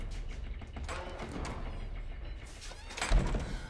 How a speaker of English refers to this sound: She doesn't yell. She slams this door and she's trying to hide from the orderly.